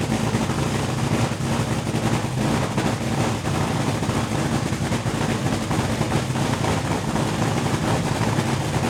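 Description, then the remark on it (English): A top fuel dragster engine idles loudly and steadily, a thick, rumbling roar with a choppy, pulsing texture that holds constant throughout, with no voices. “All right, so now I'm going to play a little bit of a soundtrack of a top fuel dragster. So this is going to be idling the top fueler.”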